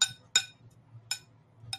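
A spoon strikes a bowl four times at an uneven pace, each clink bright and ringing with a high metallic tone, over a steady low hum.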